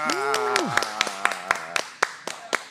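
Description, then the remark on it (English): Sharp hand claps at a live recording at Treadwell Coffee land in a steady, quick rhythm, about a dozen in all, while a held voice-like tone wavers and slides downward during the first half before the claps continue alone. “Oh, that with the sound of the claps.”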